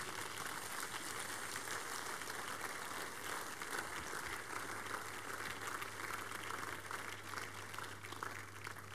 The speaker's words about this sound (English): Rise to your feet. Give the Lord the biggest clap offering.